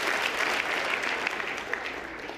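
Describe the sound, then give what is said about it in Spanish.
Steady applause from an audience for a sister who offered her support, a dense wash of many hands clapping at an even, fairly loud level throughout, with no voices standing out. “Un aplauso a la hermana por quererme apoyar.”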